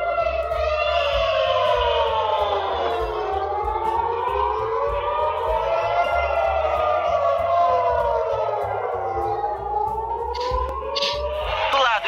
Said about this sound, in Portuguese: A sirene é uma coisa assim, muito forte. Toca na alma.